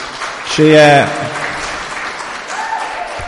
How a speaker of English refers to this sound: So I'll give her a round of applause.